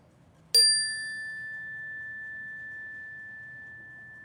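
chime ringing

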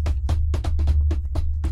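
hand slapping a desk

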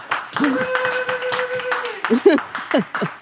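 audience applause and clapping

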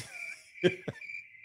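cricket chirping sound effect

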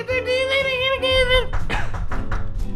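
knocking on a door

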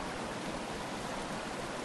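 flowing mountain stream water

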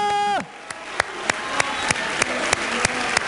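audience cheering and applauding

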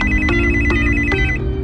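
mobile phone ringtone

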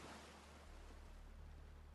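ocean waves splashing

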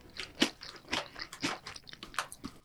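chewing crunchy potato chips

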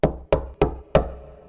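knocking on a door

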